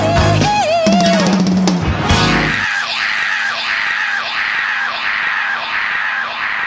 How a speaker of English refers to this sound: The yow scream at almost like 2 minutes and 29 seconds that goes on for 15 seconds before the song continues.